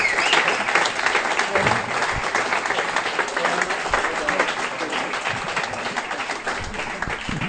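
Sustained audience applause, a dense crackle of many hands clapping at once, steady and fairly loud for several seconds with a few faint voices mixed in.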